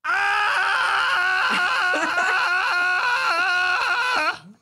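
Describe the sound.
A man's voice lets out a long, loud, sustained cartoonish scream, continuous for several seconds with wavering pitch, imitating a panicked cartoon dog screaming at the top of its lungs before cutting off abruptly.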